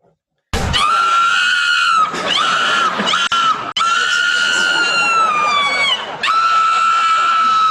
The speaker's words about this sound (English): So is it just screaming?